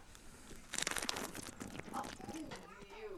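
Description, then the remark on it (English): Someone noisily gulps down a Bud Light beer: a loud burst of wet, crackly slurping and swallowing, then quieter sips trailing off, with a faint voice murmuring near the end. “And that's the loudest Bud Light drink I've ever heard in my life.”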